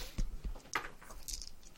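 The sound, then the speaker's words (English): Dice clatter and tumble across a hard tabletop, a quick burst of small knocks and rattles that settles within a couple of seconds, fairly quiet, with no voices. “Oops, I've got to roll 3 dice, not 1.”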